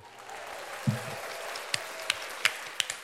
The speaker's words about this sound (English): Round of applause.